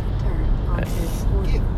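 A car drives past at about 12:20 at night in light rain, its loud, steady engine rumble filling the whole moment, with a brief hiss of higher noise midway through.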